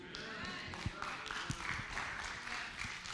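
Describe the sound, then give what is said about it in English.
Seven people clap in scattered, uneven bursts for a few seconds, the individual claps overlapping into a loose patter, with some faint voices underneath. “We have seven righteous people clapping over here.”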